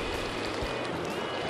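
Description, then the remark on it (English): A mountain stream in a snowy Colorado canyon on a winter day rushes steadily over boulders, a continuous wash of water noise with no pauses and no voices, as someone fishes the slack water between two boulders. “Fishing some slack water in between two rocks. Two boulders, really.”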